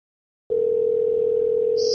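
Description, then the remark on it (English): A steady telephone tone starts after a short silence and holds loud and unbroken, like the first burst of ringback on an outgoing call made by pressing add call to bring another person into a phone call, with faint line hiss underneath and a brief high blip near the end. “Oh, man, that's ringing.”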